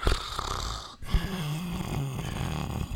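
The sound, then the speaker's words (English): A person makes exaggerated, rumbling ASMR-style snore sounds, a rough inhale followed by a low, drawn-out vibrating exhale, with no words spoken. “You can do that ASMR snore and stuff, and I can just kind of speak randomly over it.”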